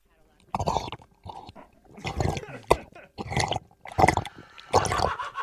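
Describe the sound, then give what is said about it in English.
Someone drinks water in a series of wet gulping and slurping bursts, about six of them at an uneven pace, with short pauses in between. “I'd really like to drink some water. Okay, have a drink of water.”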